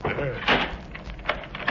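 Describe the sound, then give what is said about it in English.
A door aboard a ship shuts with a brief, muffled thud near the middle, followed by faint rattling, while people talk in the background. “Why did you close that door?”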